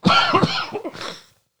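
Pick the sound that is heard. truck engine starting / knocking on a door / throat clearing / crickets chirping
throat clearing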